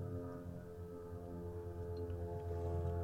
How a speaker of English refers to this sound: These planes, man. I don't know if you guys can hear it, but I'm pausing to let it go by because it's just ridiculous.